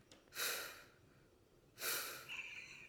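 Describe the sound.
A person imitates a narcoleptic dog's heavy breathing with two loud, breathy huffs about a second and a half apart, the second trailing into a rougher exhale, with no words spoken.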